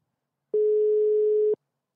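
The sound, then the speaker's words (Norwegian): A single one-second burst of a steady, mid-pitched telephone ringing tone, clear and fairly loud, with silence before and after, as a phone call is placed to a guest. “men vi ringer rett og slett bare til Jørgen”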